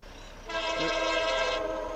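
A loud train horn blares in one sustained honk, its rich stacked tones holding steady for about a second over a rumbling rail-yard background.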